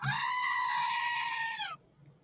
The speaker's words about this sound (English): No, this is my goat. Yeah. It's for sound effects.